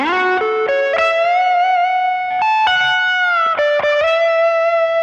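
An electric guitar plays a short, sustained lead riff with bends and slides, played with no tape delay turned on, notes ringing out clearly and dry with no echo trailing behind them, loud.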